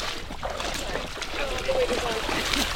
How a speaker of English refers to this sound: To go out with them, I put on blue waders so I can splash into the boat.